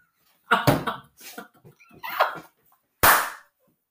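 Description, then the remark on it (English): A voice imitates fireworks going off with a string of whooshing, sputtering mouth noises, then one loud, sharp burst that fades quickly, with no other sounds. “Fireworks now going on.”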